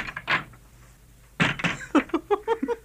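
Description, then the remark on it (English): A guard opens the door of King Nebuchadnezzar's court in Babylon: a sharp click, then a heavier thud and scrape, followed by a short run of creaky, wavering groans as it swings. “Open the door, guard, that we may depart.”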